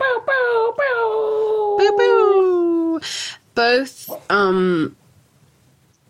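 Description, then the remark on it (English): A dog named Doug growls in agreement in a series of drawn-out, whiny vocalizations that slide down in pitch, several bursts over a few seconds, with a person briefly speaking. “Doug's growling in agreement.”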